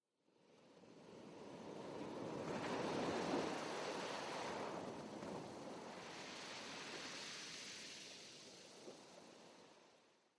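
Sea waves surge and roar in broad, rolling swells beneath a boat rocking from side to side with the rhythm of the swell, cresting around the middle and again later, with a steady wash of water; no voices.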